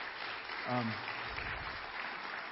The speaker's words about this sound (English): Thank you for doing that. We applaud.